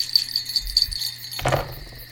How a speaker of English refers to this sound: We'll roll here on the top of this flat tree stump. Dice that fall on the ground don't count. No rerolls. Now. Shake, rattle, and roll.